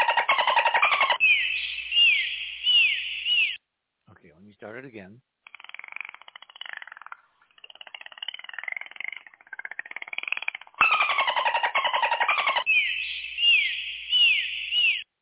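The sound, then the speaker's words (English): Rapid dolphin click trains crackle alongside rising, looping whistles, playing loudly at the start and again near the end, with a stretch of talking and mixed chirps in between. “The clicks are the dolphin clicks.”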